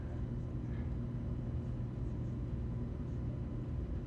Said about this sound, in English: Anyways, in this room we're in, unfortunately, there's always a rumbling of AC and whatnot, so the external mics probably aren't going to be good.